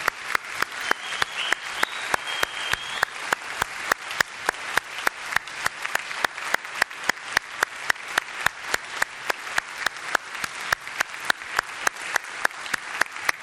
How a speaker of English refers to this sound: I mean, you've got a Sunday off, obviously, but just stand up where you are. Let's give these guys a big round of applause.